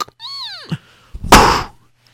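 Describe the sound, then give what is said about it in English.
A heavy wooden door swings shut: a drawn-out, creaking groan that bends downward in pitch, a short pause, then a single loud, booming thud that quickly fades. “And sure enough, the big, heavy wooden doors were closed.”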